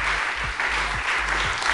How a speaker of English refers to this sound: So please give another round of applause